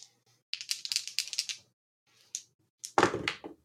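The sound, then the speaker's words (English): Dice are rolled in a game, rattling and clattering across a hard surface in a quick burst of small clicks, then a few scattered taps and a final louder tumble, landing on a 3. Fairly quiet, with no voices. “That's 3 on the dice.”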